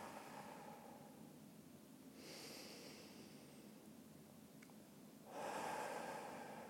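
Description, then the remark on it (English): Two slow, deep breaths: a long inhale drawn through the nose, a pause, then a fuller breathy exhale out through the mouth, soft and unhurried with no talking. “So to start off with, just take a few nice deep breaths. Breathing in through the nose and fully out through the mouth.”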